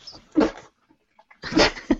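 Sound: sneeze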